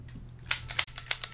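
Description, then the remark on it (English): A plastic trigger on a Nintendo Zapper light gun being clicked repeatedly, about seven sharp, bright clicks in an uneven rhythm over a faint low hum, with no talking. “hear that? It's a Nintendo Zapper.”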